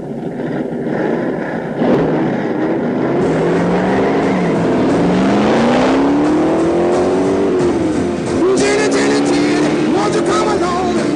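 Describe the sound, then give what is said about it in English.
A car with a stiff clutch revs hard and accelerates, its pitch climbing and shifting through gears in a loud, continuous roar, with some voices faintly mixed underneath. “Takes a lot of strength to press this clutch. This car could get away from you.”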